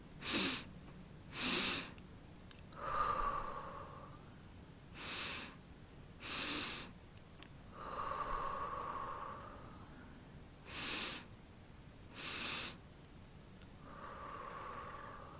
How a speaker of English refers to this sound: But to get there quicker, to get your body into a quicker state of relaxation, the two breaths in and one breath out, do that maybe two or three times and feel how your body kind of relaxes into it.